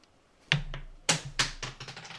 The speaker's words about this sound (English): That a floor dice? That one escaped, but the other one did not, which is good because it rolled very well.